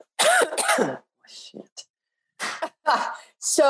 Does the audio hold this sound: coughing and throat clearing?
yes